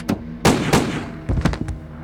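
Two loud, sharp gunshots from a .357 Magnum revolver, fired by an armed man at police officer Walt Frago, ring out about a third of a second apart, followed by a brief cluster of softer, quicker knocks and thuds.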